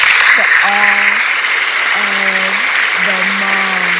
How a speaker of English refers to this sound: There, people are cheering you on. We're cheering you on. Those are some cheers that I wanted you to hear.